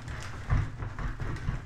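An old wicker chair in a living room creaks and crackles as someone shifts in it, a quiet, irregular run of dry snapping and rustling with a couple of heavier low thumps, and no one speaking.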